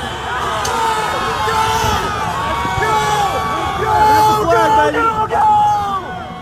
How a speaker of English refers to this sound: Outside the building, the mob had toppled barricades in front of the Capitol and pushed past Capitol police officers.